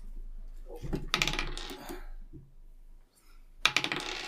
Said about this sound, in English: D12. I'm blessing the dice. Okay, I have to re-roll.